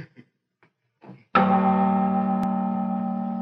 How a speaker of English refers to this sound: deaf from his years of ringing the cathedral's bells, Quasimodo. Gabriel, Guillaume, Big Marie. She made me deaf, you know.